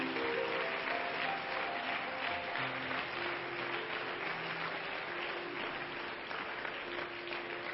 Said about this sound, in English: But I'd like the church family right now just to give all of our guests a good hand clap.